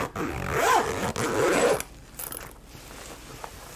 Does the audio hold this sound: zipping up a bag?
yes